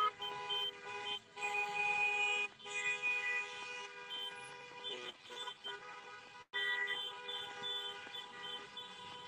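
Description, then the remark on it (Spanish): Many car horns honk together in a sustained, overlapping chorus, some tones held long and others short, with brief gaps, as a caravan of arriving cars passes. “Siguen llegando los carros, siguen llegando los autos.”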